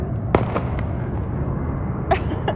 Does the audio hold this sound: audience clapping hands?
no